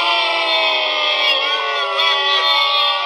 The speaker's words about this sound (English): Look, the audience disagrees with you. We are already two sad nerds sitting at a table recording a podcast alone. We don't need canned applause.